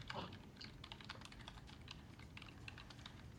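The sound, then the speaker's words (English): Rapid, irregular clatter of keys as someone types messages on a computer keyboard, steady throughout, with no voices. “Are you typing me messages?”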